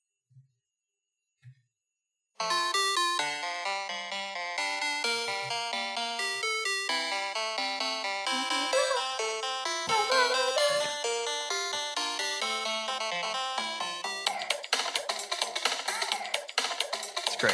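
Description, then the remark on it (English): Two soft taps, then the Donkey Kong Country video game theme music starts abruptly and plays steadily: bright, layered synth melodies with a busy rhythm, growing denser and more percussive toward the end. No one talks. “I'm gonna play you the Donkey Kong Country theme just so you know what I'm talking about.”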